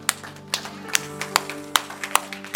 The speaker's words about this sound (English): Friends, can we clap our hands to the Lord today?